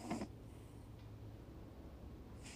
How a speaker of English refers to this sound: It's like she hears me trying to catch her. The cat snoring.